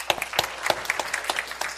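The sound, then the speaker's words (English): A crowd applauds steadily as people are introduced, many hands clapping at once in a dense, crackling wash of claps at moderate loudness, with no voices standing out. “Clap. Love these guys.”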